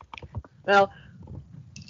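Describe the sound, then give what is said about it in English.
Wet mouth sounds of someone taking a big sip of a drink: a few quick slurpy clicks, then a short voiced gulp or satisfied 'ahh,' followed by faint swallowing noises. “Well, she said, but I mean, we already had 2 sips. Taking a big one.”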